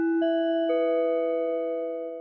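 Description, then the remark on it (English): A timer ding ending a lightning round: a bright, bell-like chime sounding two quick notes, the second one lower, which ring on steadily and slowly fade. Nobody talks over it. “That the concludes our lightning round. timer is up.”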